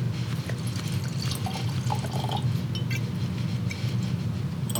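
Wine pouring steadily into a glass, a continuous trickling splash with faint clinks and small bubbling sounds, no voices.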